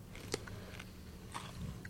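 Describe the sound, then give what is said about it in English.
Quiet crunching as someone bites into a crisp, bright green, not soggy pickle: a sharp snap followed by a couple of softer crunchy chews, with no talking. “It's like super green, and they're not soggy, and they're crunchy.”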